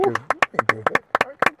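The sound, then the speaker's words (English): Around ten sharp, loud hand claps in an uneven, quick rhythm, with a voice sounding underneath them throughout. “And clap on that.”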